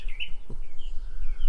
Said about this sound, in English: First of all, I have to say that bird was quite annoying during math class.